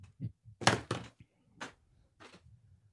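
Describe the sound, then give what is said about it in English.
A bedroom door swings shut with a pair of heavy thumps, followed by a couple of softer knocks and rattles as it settles, with no talking. “But really quick before we get into it, I need to, 1 second, actually in real life, need to close my bedroom door because I just realized it's open.”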